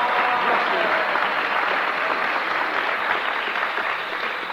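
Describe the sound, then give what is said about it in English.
An audience at a church meeting claps steadily for several seconds to welcome a woman, a dense, even wash of many hands with no pauses, tapering slightly at the end. “Give her a clap.”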